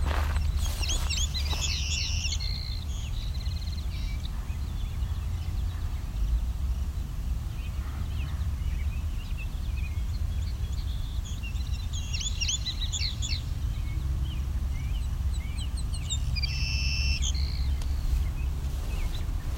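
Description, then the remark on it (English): Savannah sparrow calls come in three short bouts of thin, high chirps and buzzy trills, spaced several seconds apart, over a steady low outdoor rumble, in a field crossed by a very wide winding path. “Some Savannah sparrows over here. Can I point this at them?”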